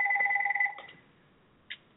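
A phone rings with a steady electronic two-tone trill for under a second, then cuts off, followed by a short faint chirp. No one speaks.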